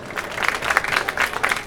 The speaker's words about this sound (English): Thank you very much for that entirely undeserved applause.